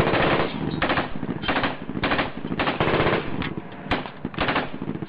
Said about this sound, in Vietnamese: Với một tay còn lại, anh liên tục bắn hết băng đạn này tới băng đạn khác.